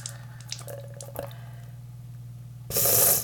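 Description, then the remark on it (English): Warm salt water is squeezed from the nozzle of a saline rinse bottle into a right nostril, head leaned forward over a sink, giving a sudden loud hissing squirt near the end, after faint drips and small clicks over a low steady hum. “So I squirted some of this warm salt water into my right nostril.”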